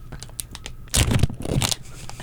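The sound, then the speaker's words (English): Crinkly plastic rustling as a green candy bag is pulled open, a burst of crackling and tearing noise lasting about a second, fairly loud after a few faint crinkles. “Want to hear all that crunch? That's the green bag.”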